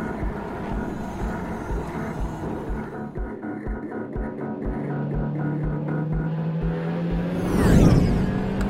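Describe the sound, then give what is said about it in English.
The Hermes, a Starcore concept electric race car, whines steadily with a rising electric hum and rhythmic mechanical pulsing, then roars past in a loud whooshing rush near the end. “I have to say that the Hermes, their concept electric car, is really showing the world what Starcore is capable of.”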